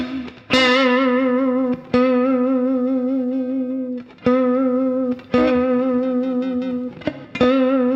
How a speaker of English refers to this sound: So on one hand, you get the B string ringing out as it's dragged across the frets without actually picking it, or you get your finger bumping against the D string if you do upward vibrato.